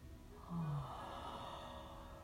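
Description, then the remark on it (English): A deep, breathy inhale flows into a yawn with a brief low, falling vocal tone, then a long soft exhale. It is quiet, with no talking. “Inhale to yawn.”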